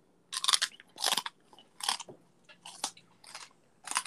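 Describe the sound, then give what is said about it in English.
Crisp crunching bites of teeth on a phone, hard and glassy, about six sharp bursts in a steady chewing rhythm, with no voices. “What if you chew on your phone?”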